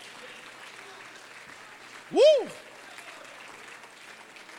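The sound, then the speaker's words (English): A crowd claps steadily throughout, a dense wash of applause, with one loud whooping cheer rising above it midway, as an audience answers a preacher's call to clap during a sermon on the Word of God. “Oh, clap your hands and receive that.”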